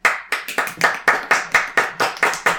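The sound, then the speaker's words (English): About ten sharp hand claps in a quick, slightly uneven rhythm, bright and fairly loud, with no talking over them. “I'd clap too, but I'm holding a book and I don't want to lose my place.”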